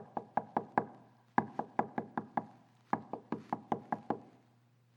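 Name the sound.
knocking on a door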